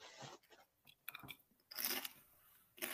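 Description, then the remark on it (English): Loud crunching of a thick tortilla chip scooped with Pace salsa, with several sharp bites and chews in irregular bursts, the biggest crunch near the end of the bite sequence; no talking. “Oh, that's a crunch. That's a thick and crunchy there.”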